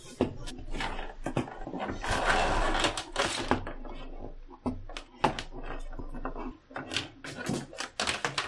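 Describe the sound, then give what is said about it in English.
Rapid, irregular computer mouse clicks, crisp, come in bursts over a low rustle of desk handling and movement. “I'm trying to keep my mouse away from it, too, so... Oh, you're clicking and things like that?”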